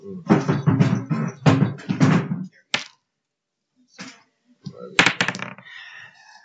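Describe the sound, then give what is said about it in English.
A burst of rapid clattering as dice tumble across a tabletop during a Dungeons & Dragons game, with everyone rolling for perception, lasting a couple of seconds, then a short pause before another brief rattle with faint voices. “everyone roll perception.”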